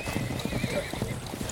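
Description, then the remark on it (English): A warrior's horse: hooves clip-clop in a quick, steady rhythm, while the horse whinnies over the hoofbeats in a short, strained neigh. “Suddenly a warrior seizes my arm and yanks me upon his horse.”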